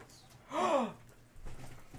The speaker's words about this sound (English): I don't like your gasping.